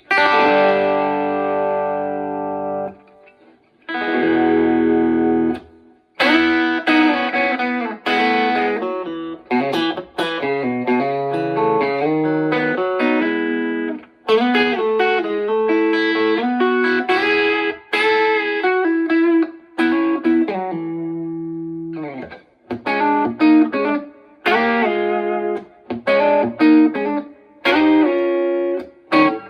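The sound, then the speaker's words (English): An electric guitar plays, first as a dry signal and then through a Mostortion distortion pedal: a sustained chord, then busy riffs and single notes with a buzzing, saturated distortion tone and a sizzling top end, loud and steady with short gaps between phrases. “So here is the dry signal. And here's the Mostortion.”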